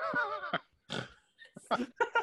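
A run of short, nasal snorts in irregular bursts, pig-like and fairly loud, with brief gaps between them and a warbling, voiced quality at the start.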